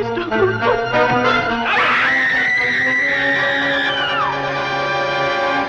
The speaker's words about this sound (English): It's not a large role, but Gwynne makes an impact, and in her climactic scene, she lets out one hell of a scream. It was the scream that got her noticed and made her perfect for Universal's continued devotion to the horror genre throughout the 1940s.